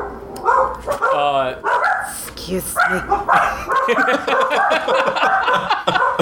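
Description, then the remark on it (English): A dog barks several times, short sharp yaps mixed in with people talking and a bit of laughter. “Dogs love …, everybody.”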